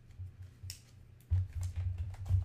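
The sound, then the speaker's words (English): Quiet scratching of a pen as someone writes down a goal on a piece of paper, a series of short strokes that pick up after a brief pause, with no one speaking. “Get a piece of paper and write down. Here, I'm going to do it right now, actually.”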